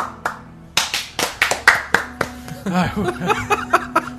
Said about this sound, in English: You high-five him to tag him in, and that counts as a clap. Yeah, here we go.